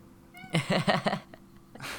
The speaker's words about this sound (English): The cat agrees with me. Yeah, he does. I don't know what he wants right now. I think he wants in my lap, but this is not happening right now.